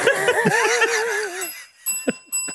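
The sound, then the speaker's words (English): A bicycle bell rings, its bright metallic tones lingering and fading, after a wavering warbling sound and alongside a few short sharp knocks. “Sorry, the bell's gone off.”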